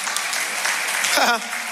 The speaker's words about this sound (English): Yeah, if you're going to clap, clap. Come on.